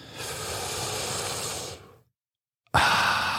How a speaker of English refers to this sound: Man, I'm just breathing. Breathing, getting in that oxygen.